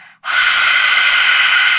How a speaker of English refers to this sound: Opening up your mouth and breathing out with your tongue out.